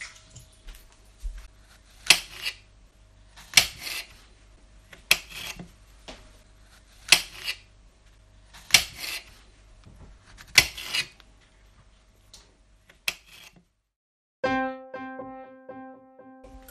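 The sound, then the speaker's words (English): Soft scrubbing strokes of mushrooms, taken a handful at a time from a pan of cold water, being rubbed with a piece of flannel cloth, repeating roughly every second or two, with a brief steady tone sounding at the very end. “Rub them with a piece of flannel.”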